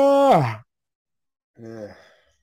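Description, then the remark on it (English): Two yawns with a breathy, falling-pitch voice, fairly loud. The first is strong and sinks low; the second comes after a short silence and is softer. “The fucking yawn off, isn't it?”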